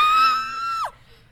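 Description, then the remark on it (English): A single high, shrill scream carries from behind the listeners at about 9:24 p.m., holding steady for nearly a second before its pitch drops away, with a low rumble underneath and no talking. “It sounded like a scream from behind us.”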